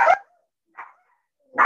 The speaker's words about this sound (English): I apologize. My daughter walked by my office and all four dogs just decided to attack her through the glass.